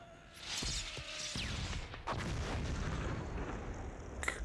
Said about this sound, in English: Good lord. That was a huge explosion.